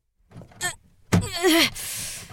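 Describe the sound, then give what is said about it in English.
A locked door, sealed in a lockdown, is yanked with a heavy thunk, followed by a strained, creaking groan as it is forced against its lock, then a hissing rush. Fairly loud, with no voices. “Go and check the door. Make sure that this is... That we're still in lockdown.”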